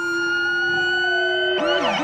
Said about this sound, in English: I keep walking, trying to stay zen, as both an ambulance and then a new hellhound police car equipped with what's known as a rumble siren zooms by.